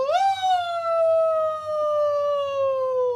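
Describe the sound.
A person imitates a wolf howl: one long, loud vocal note that swoops up quickly, then holds and slowly sinks in pitch for about three seconds, with faint background noise underneath.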